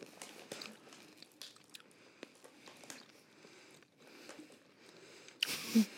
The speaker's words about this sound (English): You don't have to keep your eyes closed while you chew.